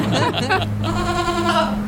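goat bleating

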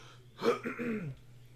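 coughing

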